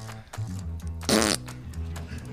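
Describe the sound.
The Oklahoma State football coach, answering a beat writer's question, blows a loud, wet raspberry imitating a fart. The burst lasts about a quarter second and sits in the middle of low, murmuring vocal sounds.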